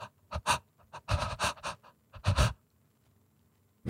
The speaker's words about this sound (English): That cry breath, dude, cry breath is so funny. You're like done crying, but like somebody says something to you and you're like, that cry breath. She still has cry breath.